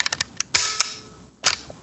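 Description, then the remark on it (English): Loud mechanical shutter snaps of a Lomo LCA120 medium format camera, with a harsh, staple-gun-like clack and brief metallic ring, preceded by a few lighter ticks, then another sharp snap near the end. No one speaks. “But I really, this is a quirky sound, the Lomo LCA120.”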